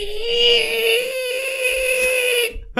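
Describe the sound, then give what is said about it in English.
A car's seized electronic parking brake gives off a steady, strained whine, one sustained tone with bright overtones that holds for about two and a half seconds, then cuts off abruptly, as the car sits across two parking bays. “So the electronic part, the brake seized. The parking brake seized.”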